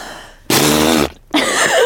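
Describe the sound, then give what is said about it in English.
A person imitates a fart with their mouth, blowing as hard as they can: two loud, buzzy blasts of vibrating lips, the first about half a second long, then a short gap and a second raspberry, loud. “I just liked how much of a fart it sounded like. Yeah. I thought that sounded like a really good, that sounded like a great fart impression.”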